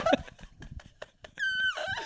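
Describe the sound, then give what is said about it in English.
Breathy puffs and clicks lead into a thin, high whistle-tone squeak held for about a third of a second, then sliding down into a rougher breathy exhale. No one speaks. “Oh, that was like a whistle tone over there with that breathing you just did.”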